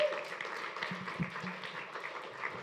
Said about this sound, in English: Could we give Tom a round of applause as he comes up to speak?